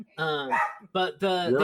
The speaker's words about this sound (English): And my dog is going crazy. Sorry about that.